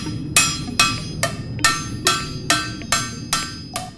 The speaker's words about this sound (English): Once the pan is pressed, then there's still some deforming that occurs around the edges, and so we heat it up and then hammer that out by hand.